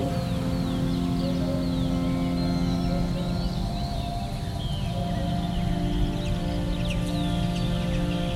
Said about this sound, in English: Birds singing.